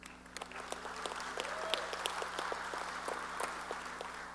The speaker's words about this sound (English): And give yourself a round of applause for being here in great numbers, day number one of reInvent.